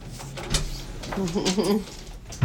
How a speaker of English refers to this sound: We apologize for Superdog crying in the background.